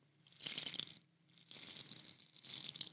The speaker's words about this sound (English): Is that a musical instrument? Yeah, it's a rain stick. But is it not to just make you feel soothed? What are you supposed to do that? You can do it like that as well. You can, you know. Oh. But yeah, it's like rain.